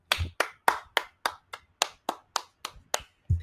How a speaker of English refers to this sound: That man deserves applause, a raise, and something.